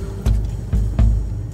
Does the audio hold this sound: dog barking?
no